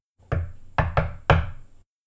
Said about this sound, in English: So it was a sound of paper rustling and then this knocking sound.